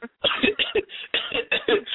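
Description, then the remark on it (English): A fairly loud fit of coughing: about half a dozen harsh, raspy coughs in quick succession with short gaps, no talking. “Excuse me, I'm at that. See, I'm coughing.”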